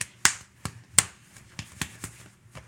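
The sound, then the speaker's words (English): A quick run of sharp hand claps in an uneven, syncopated rhythm, some louder and crisper than others, with no talking. “Have you seen that fucking meme where it's, like, when your clap game is out of this world?”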